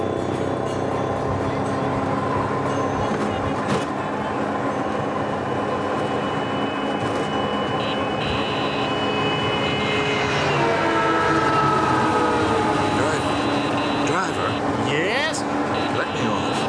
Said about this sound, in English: Well, jet lag or not, I think I'll try one of those three-wheeled scooter taxis. It's nothing like a little careening through traffic to wake me up.